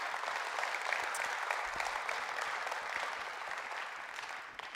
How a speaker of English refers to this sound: Can we give them a round of applause for sharing?